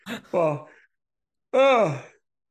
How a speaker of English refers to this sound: Well, I'm going to go. I'm beginning to yawn now.